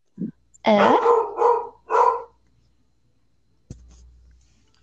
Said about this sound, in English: Oh, the dogs.